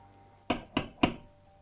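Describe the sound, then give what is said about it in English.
Three firm, evenly spaced knocks on a front door at night, sharp, each ringing out briefly before the next, with no voices and a quiet background. “sometime during that night, I heard knocking at the front door.”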